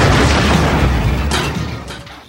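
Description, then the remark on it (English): A loud, booming cinematic explosion from a film trailer with a heavy low-end rumble and crackling debris that slowly decays, followed by a couple of sharp bursts near the end. “This is one of those with the I'm going to kick your explosion sound bits, which I think has been used in various other cinematic trailers as well, but to great effect here.”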